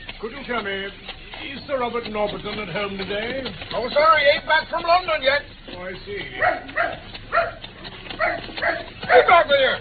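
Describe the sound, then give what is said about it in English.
A dog barks and yelps repeatedly, with excited whining in between, while voices talk over the commotion. “And I think I shall also accidentally loose my hold of this good dog's lead.”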